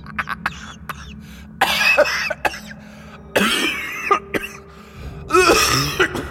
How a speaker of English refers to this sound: A mixture of coughing and laughing that reminded Keelan of a petrol mower struggling to start. A choking mix of mirth.